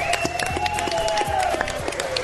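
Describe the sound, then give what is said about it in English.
Sustained audience applause for Sante, Adairius, and Russian River, a dense wash of many hands clapping at a steady moderate level, with a thin tonal hum running underneath throughout. “Everybody, let's hear it for Sante, Adairius, and Russian River.”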